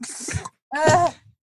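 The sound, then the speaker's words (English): A person imitates snoring with two rough, throaty vocal snorts, the second longer and louder, then a brief start of a third. It sounds breathy, with no talking. “… has been like snoring”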